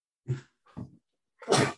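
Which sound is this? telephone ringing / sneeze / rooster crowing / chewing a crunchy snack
sneeze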